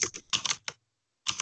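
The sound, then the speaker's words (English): Quick bursts of typing on a computer keyboard as a search is entered into Google, clustered keystrokes clattering, then a pause of about half a second before another rapid flurry of keys. “Are you really typing this in to Google right now?”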